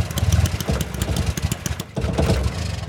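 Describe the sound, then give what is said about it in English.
A lawnmower's small petrol engine chugs steadily with a rough, rattling putter, dips briefly for a moment, then picks back up and keeps running loudly. “The lawnmower.”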